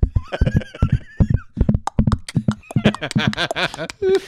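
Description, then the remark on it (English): Steady hooves of police horses clip-clop in a quick, even rhythm, then a horse lets out a loud, quavering whinny near the end, clear, with no talking. “Yeah, horse, horse cops.”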